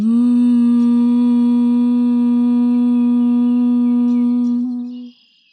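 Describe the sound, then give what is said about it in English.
A steady, sustained hum on one low pitch, held loud and even for about five seconds on a single exhaled breath during a bee breath (humming breath) exercise, before tapering off, with no talking over it. “Exhale, humming.”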